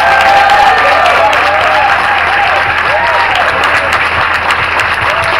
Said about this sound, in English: I wanted to have a round of applause for Chef Robert. He's the one who prepared the wonderful food that you have today.